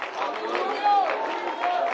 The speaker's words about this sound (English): I want you to clap your hands to the Lord as you're being seated. Come on, somebody give Him a shout out.